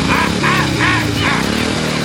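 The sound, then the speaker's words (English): A loud chainsaw revs repeatedly, its engine surging and dropping in about four quick rhythmic pulses over a constant gritty motor rumble, with no voices. “And his ukulele is also a chainsaw, and he's cutting people up.”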